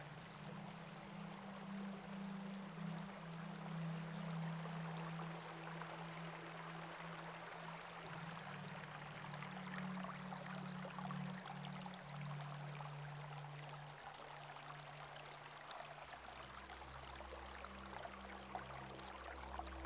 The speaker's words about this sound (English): Eventually, you find yourself walking beside a crystal clear river.